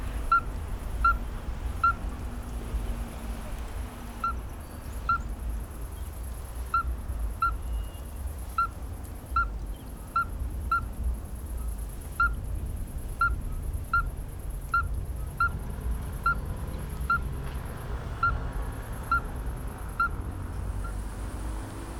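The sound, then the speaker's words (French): Toads calling in the evening in a natural garden: a steady series of short, clear, piping notes at a middle pitch, repeating about once a second over a soft, constant low background hum, with no voices. “Ça s'élève comme ça le soir.”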